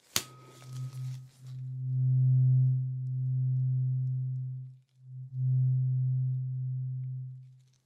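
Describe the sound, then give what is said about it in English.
A low, steady humming tone from a hearing test sounds loudly and evenly for a few seconds, cuts out briefly, then resumes before fading away, with a short noisy rustle at the start. “Keep your eyes closed, please, and tell me when you can hear the humming stop.”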